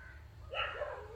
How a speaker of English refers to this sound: When you listen quietly, there is no resistance. There is no irritation. You do not identify yourself with the dog and the barking of it.